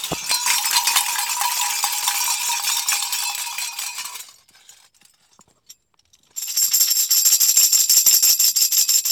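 Bells ring in a dense, bright, continuous clangor of overlapping strikes, fall silent for about two seconds, then start up again just as loud and shimmering.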